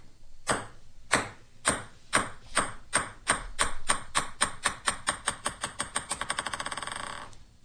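A ping pong ball bounces on a hard surface, its sharp clicks coming faster and closer together until they blur into a rapid patter and stop. Clear, no voices.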